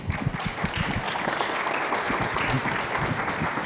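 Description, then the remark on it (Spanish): An audience applauds steadily in thanks to someone who spoke before the audience at the microphone, a dense wash of many hands clapping at an even, sustained loudness throughout, with no voices standing out. “Muy bien, les aplaudimos siempre a todos en agradecimiento porque hay que tener valor, ¿verdad?, para decir frente a la congregación y en el micrófono esto.”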